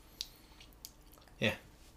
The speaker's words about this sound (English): You took a gulp of that one. Ooh, and it's purple. I'm trying to get through the first drink of it, and I get to the second part, which is actual tasting.